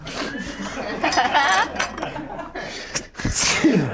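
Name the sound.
sneeze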